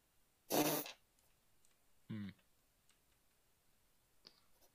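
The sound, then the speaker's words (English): A dice tower topples and breaks with one sharp, loud clattering crash, then a brief voiced exclamation and a few faint ticks and clicks in otherwise quiet surroundings. “No, my dice tower.”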